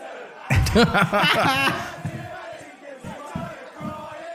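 A big soccer stadium crowd bursts into a loud, rising roar of chanting voices, then settles into rhythmic stomping thuds with murmuring underneath.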